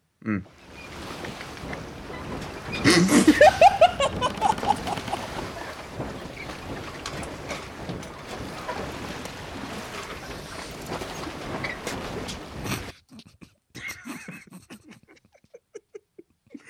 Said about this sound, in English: It was a seaplane.